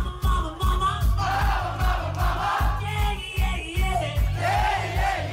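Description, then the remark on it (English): A loud concert crowd roars and yells over a steady, thumping beat, with many voices blending into a continuous wall of cheering. “does the crowd lap it up?”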